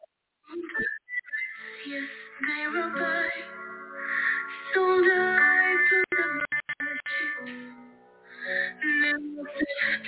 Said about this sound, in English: Her version of …, like she covered that.